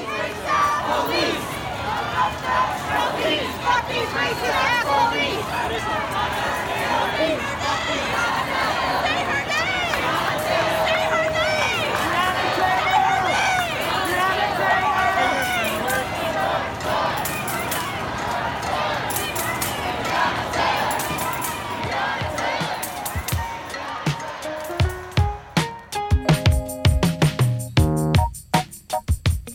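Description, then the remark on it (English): A loud crowd of demonstrators in New York City, protesting the police killings of Breonna Taylor and George Floyd and demanding police reform, chants and shouts together in a steady, dense roar of voices for about twenty-five seconds before it cuts off and music takes over. “Here are some demonstrators from New York City this week.”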